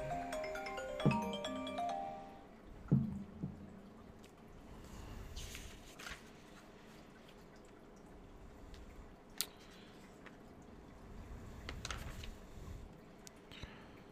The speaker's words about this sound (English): Whenever I get a phone call, everything in my vicinity vibrates.